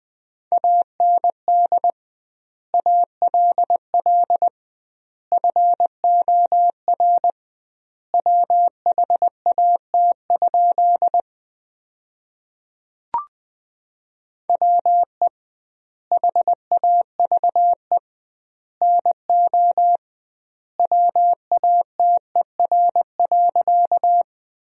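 Morse code at 20 words per minute with double word spacing, sending sentences built from the top 100 words: a steady, mid-pitched tone keyed into rapid dots and dashes, grouped into words separated by longer pauses, with one brief click partway through.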